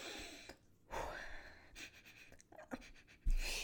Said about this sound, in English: Okay, so I am currently sniffing this.